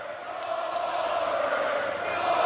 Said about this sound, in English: Listen to that crowd.